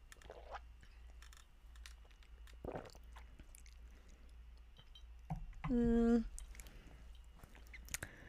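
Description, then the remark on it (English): Quiet sipping and wet mouth sounds with small lip smacks, followed by a brief, louder appreciative hum while tasting tequila. “Let me sip it, and then you tell me.”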